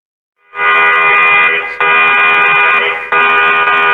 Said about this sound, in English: But isn't the more important question, not will we hear the alarm, but when the alarm sounds, will we respond?